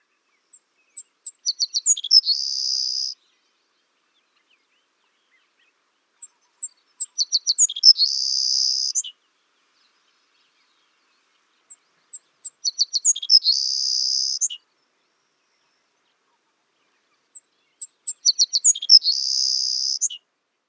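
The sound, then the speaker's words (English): A sparrow, one of the most numerous songbirds in North America, with a short tail, small head and yellow spot before the eye, sings four times, about five seconds apart: each song opens with a few quick, high notes and ends in a thin, insect-like buzz, clear and unaccompanied. “Their song consists of high, fine buzzes, each one lower pitched than the preceding buzz.”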